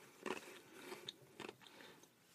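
Crisp crunching of ice being chewed in a person's mouth, a few sharp bursts in an irregular rhythm with brief pauses between bites, no talking.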